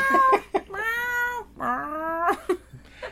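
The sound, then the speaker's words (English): A cat meows several times, with two long, drawn-out, whiny meows in the middle framed by shorter chirps and yowls. No one speaks. “My cat's irritating celebrities in heaven.”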